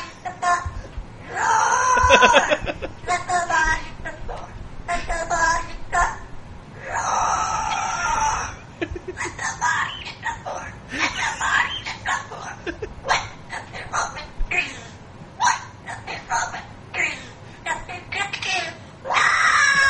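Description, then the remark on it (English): A parrot screeches and wails along to a song, loud, in repeated shrill bursts that rise and fall throughout with only brief gaps between them. “It's a parrot, by the way.”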